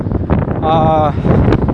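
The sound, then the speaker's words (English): Rough gusts of a strong wind buffet the microphone with a constant low rumble and crackle throughout, while a brief steady tone rises in the middle of the blustery noise. “I don't know if I'm gonna keep recording when I get out because it's really windy.”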